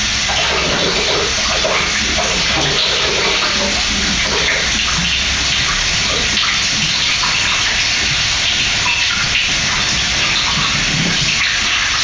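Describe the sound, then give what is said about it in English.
Cold tap water runs steadily for about twelve seconds, a continuous gushing hiss as it pours through quinoa in a strainer to rinse it, loud and unbroken with no voices. “So I'm just going to run cold water on it and, you know, make sure that all of it gets wet.”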